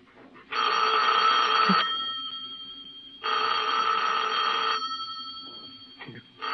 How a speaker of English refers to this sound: Better answer the phone.